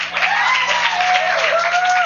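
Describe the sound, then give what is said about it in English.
An audience applauds with a steady, dense wash of clapping that holds throughout, with a few drawn-out whoops or cheers rising above the clapping. “Y'all give it up for”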